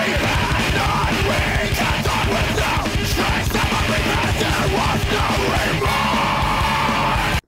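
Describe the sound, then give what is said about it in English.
A voice screams at full force into a microphone, harsh and continuous for several seconds, over dense, loud distorted music with pounding low drums and no quiet moments. “The most atonal lyrics of just somebody screaming full bore into a microphone.”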